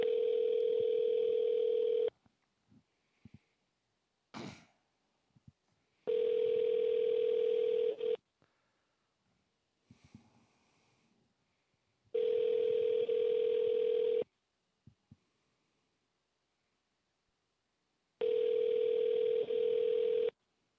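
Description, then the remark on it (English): A steady electronic telephone tone repeats in regular two-second bursts separated by roughly four-second gaps, loud, with a few faint clicks and murmurs in between, while a call to Barrow Brain and Spine is on hold. “Please hold for the next available agent.”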